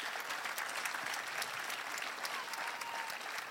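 A crowd at a Sunday church service applauds its leaders steadily, dense overlapping hand claps forming a continuous bright wash of sound that holds at an even, fairly loud level throughout, with no voices standing out.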